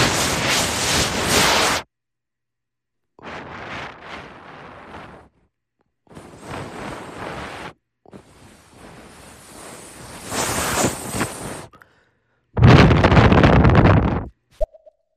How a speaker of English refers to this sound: That's the sound that is made when you rip a bong and then knock a bunch of things over.